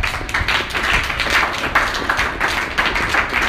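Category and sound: crowd, hands clapping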